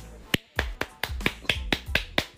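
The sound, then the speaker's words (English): Someone claps their hands about nine times in a quick, steady rhythm in honour of military service members, each clap sharp with no voices over it. “You guys deserve a clap.”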